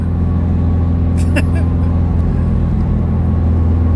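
Steady, loud low-pitched road rumble from inside a moving car, droning evenly throughout, with a brief faint rattle partway through.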